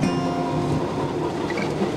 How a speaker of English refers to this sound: But walk him to the nearest Chicago Transit Authority subway station. Follow him as he steps on board a Red Line Uptown train.